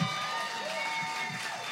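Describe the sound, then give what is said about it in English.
An audience gives one more round of applause for a performer, a steady, dense wash of clapping mixed with crowd cheering and voices, holding an even loudness for the whole short stretch. “Can we just one more round of applause for this rock star right here?”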